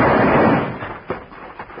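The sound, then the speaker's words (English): A loud six-gun revolver gunshot booms out at night, its rumbling tail fading over about half a second, followed by three fainter, sharp pops spaced irregularly. No one speaks. “Then a thundering six-gun tore the night apart.”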